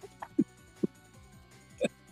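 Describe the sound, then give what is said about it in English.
A voice imitates a horn playing war tunes with a few short, low, earthy, buzzy blurts spaced unevenly over about two seconds, moderately loud against a quiet background. “And I am going to play some war tunes. It is going to be an earthy sound that leaves this horn.”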